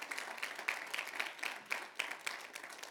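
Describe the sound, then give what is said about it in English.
An audience claps hands together in praise, a dense, steady wash of applause with sharper individual claps popping out roughly every quarter second. No one speaks over it. “Come on, y'all give the Lord a hand clap of praise.”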